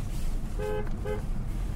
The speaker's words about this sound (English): because not long after he does the drinky poo thing, he is driving up, sees a buddy of his, and beeps the horn to let him know that they're going to the bar up there, and he says this.